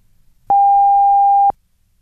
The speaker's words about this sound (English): Yep, now here comes the big one, the National Research Council official time signal. The beginning of the long dash following 10 seconds of silence indicates exactly 1 o'clock Eastern Standard Time.